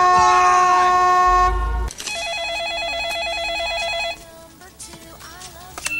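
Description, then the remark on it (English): A loud, sustained car horn blares for nearly two seconds, then gives way to a warbling, pulsing electronic tone with fainter honks and rumble of traffic behind it, from the opening of the film Eye for an Eye, where Sally Field's character is stuck in traffic. “It was directed by John Schlesinger, stars Sally Field, and it basically opens with her stuck in traffic.”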